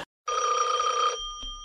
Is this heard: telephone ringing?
yes